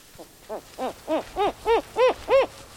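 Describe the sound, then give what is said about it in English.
An owl hoots in a quick, even series of about nine calls, each hoot slightly louder than the one before, the tones clear and mid-pitched with no talking. “They're well-meaning people, and I understand there is a sort of an allure to the owl, but we like to try to leave them alone.”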